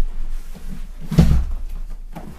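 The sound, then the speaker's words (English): A single dull thump with a brief scrape as a chair is set down on the floor while two people swap chairs, with faint shuffling before and after. “We're gonna switch chairs.”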